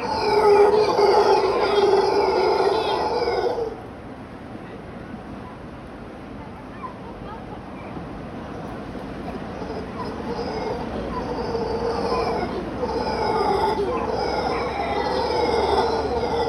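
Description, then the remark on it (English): Mantled howler monkeys roar in a loud, rasping, drawn-out chorus that breaks off after a few seconds, then slowly swells again into repeated roars and grunts, with no talking. Each roar can last 4 to 5 seconds, and the calls can be heard from several kilometers away. “Mantled howler monkey calls consists of grunts and repeated roars that can last for 4 to 5 seconds each.”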